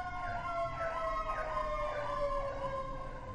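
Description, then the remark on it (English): A loud emergency vehicle siren in New York wails continuously, its tones sweeping up and down in repeated rising and falling cycles over a low rumble of traffic, with no talking. “That's what the sirens sound like in New York.”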